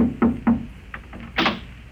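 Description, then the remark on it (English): A landlady knocks on a tenant's wooden door: two firm knocks in quick succession, followed by a few faint taps and a brief louder rattle or thump, with no voices. “I was about to take off after it when there was a knock on my door.”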